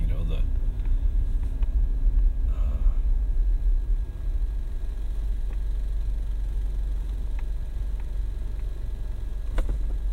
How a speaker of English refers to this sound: I'm looking outside my door as the car stops, looking for Christ now.